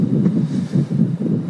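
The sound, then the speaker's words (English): A motorboat cruising across water on the way home from fishing, its low engine drone steady, with gusts of wind buffeting the microphone in a loose pulsing rhythm. No one speaks. “I'm also driving home with the interior green Luke Skywalker Return of the Jedi lightsaber color lights on in the boat”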